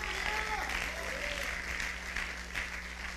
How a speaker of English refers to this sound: Come on, clap your hands.